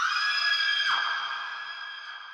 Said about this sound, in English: Screams.